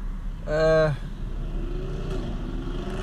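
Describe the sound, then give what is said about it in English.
A motorcycle engine drones past on the road, its steady whine dipping in pitch as it goes by, after a brief louder tonal burst near the start. “I hope you hear that motorcycle. People go fucking nuts on this road, man.”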